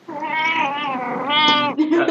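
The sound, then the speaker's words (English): A cat lets out a long, drawn-out meow that rises and wavers, fairly loud, followed by a brief quieter sound at the end. “Xerxes agrees. And so saith the cat.”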